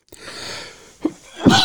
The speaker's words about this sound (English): So I'm just going to cough for a second here, clear my throat. Hold on, please.